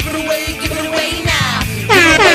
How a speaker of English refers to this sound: The air horn? Yeah.